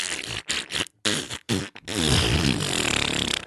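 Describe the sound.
A voice imitates a loud fart: a few short sputtering bursts broken by brief gaps, then a long, rumbling, buzzing raspberry that stretches on steadily and forcefully.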